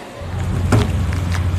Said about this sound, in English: Here in Tromsø Harbour, you still get the occasional Russian fishing boat. A fisheries agreement with Norway still allows them limited access to offload their cargo for the European market here, but it's a far cry from what it used to be like.